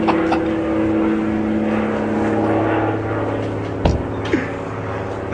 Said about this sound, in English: once this helicopter goes by, we're right here! Just land the damn thing!